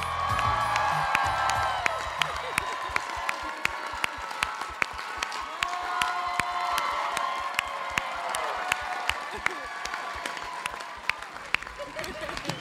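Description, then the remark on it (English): A large show crowd claps and cheers steadily as performers are welcomed to the stage, a dense roar of applause punctuated by sharp individual claps and high rising whoops and shouts that carry on throughout. “Look at this crowd.”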